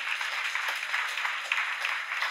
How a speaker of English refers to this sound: Could you guys stand up, please? Could you please stand up? Look, it's all over on this side. Could we give them a huge World Health Wellness round of applause?